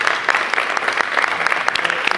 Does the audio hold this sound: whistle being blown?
no